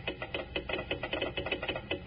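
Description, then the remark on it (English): A telegraph set's key taps out a Morse code message, 'Kellogg's Rice Krispies, snap, crackle, pop', in a quick, steady run of sharp clicks, about a dozen bursts in two seconds, with no voices over it. “A real honest-to-goodness telegraph set. Listen. Hey, can you understand the Morse code”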